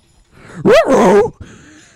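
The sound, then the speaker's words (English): A person voices a goofy cartoon-dog yelp, a single loud, wavering whine-bark lasting about half a second, followed by a faint breathy trailing sound. “You sound like another horrible dog that we have on the show.”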